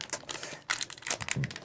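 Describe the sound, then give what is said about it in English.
Crisp crinkling of a shiny foil Russian trading card pack, a rapid run of bright, papery crackles and rustles that rise and fall in loudness, with no talking. “The North American packs are, they're gold, but they're not actually like reflective foil, and the Russian ones are shiny foil.”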